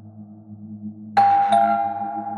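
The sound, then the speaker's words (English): A doorbell, rung by a police officer at lunchtime, chimes with two bright ding-dong tones in quick succession, ringing out clearly over a steady low background hum and lingering briefly afterward. “The next day at lunch, the doorbell rang, and there was a police officer there when Pop-Pop went to answer it.”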